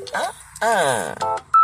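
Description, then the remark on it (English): Voice-like sounds with sliding pitch fill most of the moment, then a short, loud, clear electronic phone tone beeps near the end as a caller phones a Waffle House restaurant. “So then I call like three times.”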